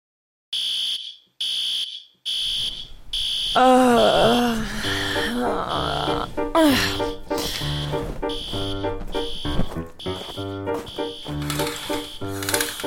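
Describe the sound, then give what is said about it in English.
A loud, piercing electronic alarm beeps in quick, evenly spaced bursts, then keeps sounding steadily while groaning, gasping vocal sounds and other noises rise over it. “That's not my morning alarm, is it?”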